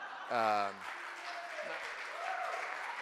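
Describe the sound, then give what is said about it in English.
A crowd breaks into steady applause, a dense wash of clapping that carries on for several seconds, opened by a single loud voiced whoop or cheer near the start. “So I really thought you guys would clap when I said that.”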